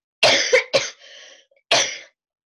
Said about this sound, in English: Here, I hope you take this part out because I'm about to cough. Okay. I'm going to turn my mic down.